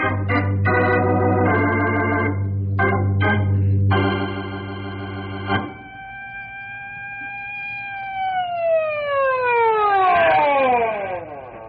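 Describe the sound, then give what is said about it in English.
An emergency vehicle siren sounds loudly, first in choppy, uneven blasts over a low engine rumble, then as a steady high wail that slowly slides downward in pitch as it winds down. “Book him on reckless driving, refusing to yield right of way to an emergency vehicle, exceeding the speed limit by 40 miles an hour.”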